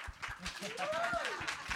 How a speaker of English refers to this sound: And so, yeah, you can clap.